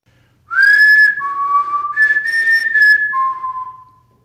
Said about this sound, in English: And I'm gonna play that clip again for you guys and let you guys hear it. I mean, this is one of the best disembodied whistles I've ever heard.